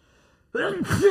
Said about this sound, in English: Sneeze, sorry. Fucking gross.